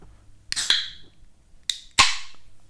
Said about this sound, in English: Are you doing your ASMR can opener?